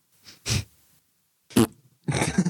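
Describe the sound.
Three close, fairly loud fart noises, each a short breathy burst with pauses between; the final one stretches longer and sputters toward the end.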